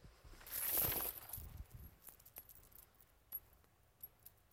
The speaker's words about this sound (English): Chain. A chain that binds us and a chain that confines us.